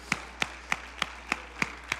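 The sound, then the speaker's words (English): Hands clap in steady unison in praise of God during a church sermon: about seven sharp claps in quick, even rhythm, somewhat faint, with no voices over them. “Clap your hands. Come on, let's praise him for that right now.”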